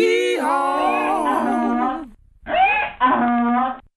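A loud donkey bray: one long, wavering harsh call, a short pause, then a quick two-part hee-haw that ends abruptly. No voices are heard.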